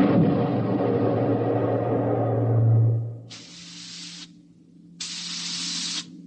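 A deep rumbling roar fades, leaving a steady low hum under two sharp, sustained hissing bursts of steam through the steering tubes of the spaceship Starfire as it maneuvers to dodge enemy attacks, each about a second long, evenly spaced and fairly loud.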